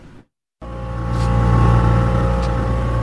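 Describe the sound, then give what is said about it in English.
After a brief moment of silence, the engine of a little motor launch on the Naf River, which divides Myanmar from Bangladesh, starts droning loudly, a steady low rumbling hum with strong tonal harmonics that swells slightly, then holds constant with no voices. “We're on the Naf River on a little launch.”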